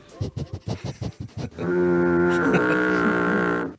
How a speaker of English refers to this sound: Foghorn. Yep, that's right.